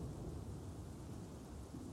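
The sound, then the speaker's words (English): A steady, deep rumble of thunder rolls on through the whole moment during a storm bad enough to cut the power, with rain hissing faintly underneath; no voices, just the low storm noise. “I knew the storm was bad, but I didn't think we were gonna, like, lose power.”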